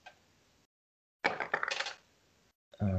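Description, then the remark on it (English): Dice, including an eight-sided die rolled for damage in a tabletop role-playing game, tumble and clatter across a hard tabletop in a quick, rattling burst of sharp clicks lasting under a second, followed by a voice starting to speak. “1d8. That's a 1. Oh, sorry, that's for Booming Blade. Wrong dice.”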